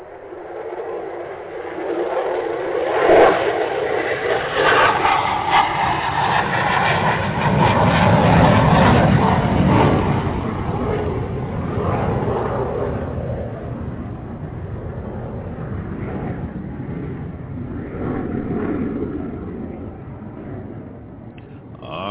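A loud, continuous airplane engine roar of an aircraft taking off, a broad rumbling rush that swells midway, then holds steady and fades slightly. There are no voices.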